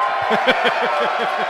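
A crowd cheers and whoops together in a dense, steady roar of overlapping voices, with bursts of yelling and laughter rising through it for the whole moment.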